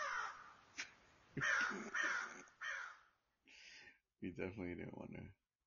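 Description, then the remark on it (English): A crow caws several times in quick succession, harsh and raspy loud calls with short pauses between them and a longer, more drawn-out call near the end. “Hey, where that crow come from?”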